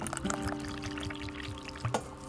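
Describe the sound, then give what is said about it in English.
Hot water pours steadily into a coffee mug for a cup of Nescafe, a continuous liquid stream with rising gurgles and small splashes as the vessel fills. “Okay, we're gonna pour her anyway because she looks ready.”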